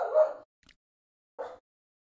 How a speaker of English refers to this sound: Dogs. Yeah, that's the old, that's the Sheba. Something must have rustled outside the door. Uh-oh. He goes, was it your neighbors? No, he just barked sometimes.